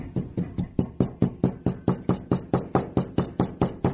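A glass of rice with a bouncy ball in it is banged repeatedly on a table, making a steady run of about sixteen solid, evenly spaced knocks, roughly four per second, with a dull low thud to each hit and no voices.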